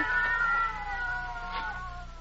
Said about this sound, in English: What's that? Cats. No, I'll break that up. Just stay put.